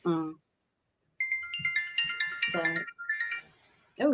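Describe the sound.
A smartwatch notification chime plays a bright, high-pitched melodic pattern of repeating tones for about two seconds, with someone talking briefly before it, over part of it, and after.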